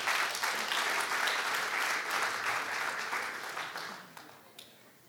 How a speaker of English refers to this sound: Thank you for participating in that. Yeah, one more round of applause.